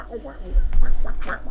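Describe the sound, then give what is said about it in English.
A voice mimics DJ record scratching with a quick run of squawking, wobbling vocal bursts, fairly loud, sounding almost like a duck quacking. “Yep, that was my impression of scratching. Not an injured duck.”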